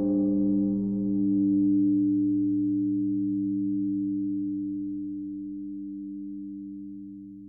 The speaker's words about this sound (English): A larger clock strikes 1 o'clock.